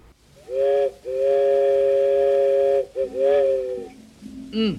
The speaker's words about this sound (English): And man sure does blow a wicked whistle, don't he?